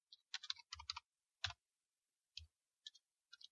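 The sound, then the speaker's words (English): Quick bursts of keyboard typing, with clustered clicks and key strikes, then a few scattered single taps trailing off. Fairly quiet, with no voices. “Oh, you're typing away. Listen to you.”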